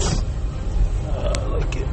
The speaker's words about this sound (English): There's so much fucking traffic.